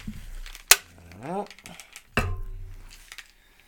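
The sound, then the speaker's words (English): Two sharp metallic clicks of drink cans, with a short stretch of canned drink pouring between them, its gurgling tone rising as the container fills. A low rumble trails off afterward. “We're going to pour these out.”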